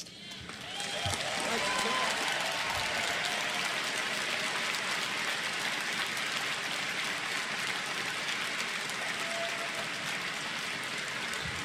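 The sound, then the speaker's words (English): A large convention crowd applauds steadily for over ten seconds, a dense wash of clapping that swells quickly and holds near full volume, with faint indistinct voices mixed in. “Now, I want you to listen to that applause. It's significant.”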